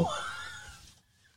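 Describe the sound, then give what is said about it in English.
A single sneeze bursts out loudly, then trails off into a breathy, hissing fade over about a second, followed by near silence. “Bless you.”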